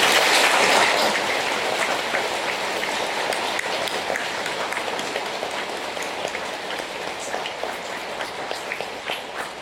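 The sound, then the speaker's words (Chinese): A Catholic church audience claps warmly to welcome nine new church members, in dense, continuous applause, strongest at the start and slowly tapering off over about ten seconds, with no voices heard. “九位爱的血液融入到慈母天主教会爱的家庭，让我们为他们鼓劲儿，让我们以热烈掌声欢迎他们加入教会。”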